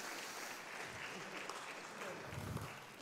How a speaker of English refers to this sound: Right, thank you, but you can give him a round of applause.